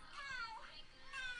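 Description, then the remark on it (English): A man's high, whiny voice imitates a cat's meow, giving two drawn-out mewing calls with sliding pitch, fairly loud, and no other sounds around them. “It's a girl acting like a cat. It's not a girl. It's a man.”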